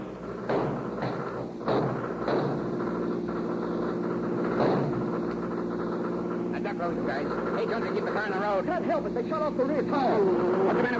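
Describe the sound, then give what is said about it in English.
The escaping convicts' car, 18 miles from Petaluma, roars steadily, its engine drone joined by sharp thuds and then rising, wavering tire squeals as it takes a turn too sharply and skids. “Then, when they're 18 miles away from Petaluma, the convict's car takes a turn too sharply. The car skids.”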